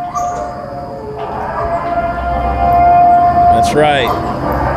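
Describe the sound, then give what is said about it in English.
The wailing siren from the film The Purge holds a long, steady tone over a low rumbling background, then bends into a brief sweeping glide near the end, fairly loud and continuous throughout. “play the purge siren again”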